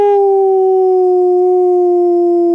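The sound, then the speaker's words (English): A single long, loud dog howl, a steady mournful tone that sags slightly in pitch as it carries on for a couple of seconds with no other sounds around it. “Ow, ow, ow! Woof, woof, woof, woof, ow! Dog days of summer.”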